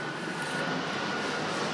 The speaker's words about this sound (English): It's our little trials and tribulations of planes flying. I know, over just stuff. When, yeah. You know, let that plane go by.